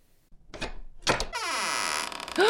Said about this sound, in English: A hidden door. I get it now. The staircase is back there, isn't it?